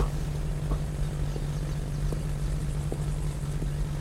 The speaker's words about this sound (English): I can't get on that plane. I can hardly fly commercial, let alone just a tiny little propeller thing like that.